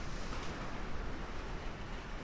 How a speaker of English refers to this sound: Hear that? That's a rain coming in. Dude, the rain is sideways outside. That's crazy.